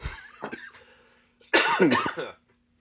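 A person coughs: a softer, raspy cough first, then after a short pause a louder, harsher burst of hacking coughs lasting under a second.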